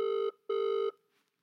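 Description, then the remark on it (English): A telephone ringing on an outgoing call, placed to call back after the phone reception dropped: two steady electronic ring tones, a short one then a longer one, separated by a brief pause, clear with no talking. “Obviously something's happened to reception. I'll call you back, 1 second.”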